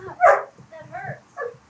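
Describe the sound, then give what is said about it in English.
A pet dog, freaking out, barks sharply and loudly once near the start, followed by a couple of shorter, whiny yelps and whimpers, with a voice murmuring faintly underneath. “Our dog is freaking the fuck out, y'all.”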